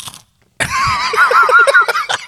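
Loud crunching of deep-fried peanuts seasoned to taste like shrimp being chewed, a dense crackling grind that starts abruptly after a brief pause and continues for a couple of seconds with no talking.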